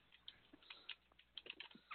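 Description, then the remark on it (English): Quiet, irregular clicking of keys on a computer keyboard, a rapid patter of short taps in uneven bursts, with no voices. “Oops, wrong keyboard.”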